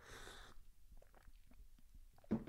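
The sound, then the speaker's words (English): A quiet slurping sip of hot coffee, followed by soft swallowing and small mouth clicks, then a brief rustling burst near the end. No one speaks. “Anyways, sipping my coffee over here.”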